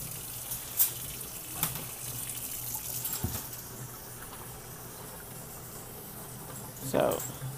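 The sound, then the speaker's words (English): Water is poured out in a steady, fairly quiet splashing stream, with a few brief knocks and clinks along the way and a louder gush near the end. “We're going to empty all this out, you guys.”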